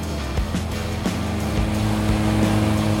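A Ferris riding lawnmower engine roars steadily at full throttle, a loud, continuous mechanical drone with a few brief bumps in pitch, and no voices.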